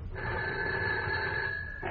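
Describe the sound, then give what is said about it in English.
A desk telephone rings once in a single sustained burst lasting nearly two seconds, loud, with a bright steady tone and no voices. “But then my phone rang.”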